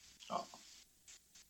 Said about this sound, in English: Zeppelin is the new addition to the Commander Cobra squadron here. And he is my baby pig that has been with us now for 4 months.